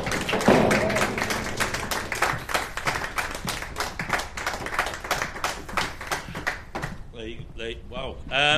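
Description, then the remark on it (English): A crowd applauds steadily for about seven seconds as people come up to the front, a dense patter of many hands clapping, before it dies away and a voice begins speaking. “Give them a round of applause as they come up here.”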